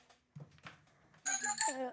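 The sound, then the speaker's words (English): A brief murmur of voices gives way to a mobile phone ringtone: a loud, bright electronic melody of bell-like tones that plays for under a second. “That's his phone ringer.”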